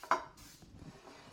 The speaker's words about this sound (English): 9 by 13 inch pan. I'm going to use cooking spray, actually. And I'm going to put a good coating on the pan.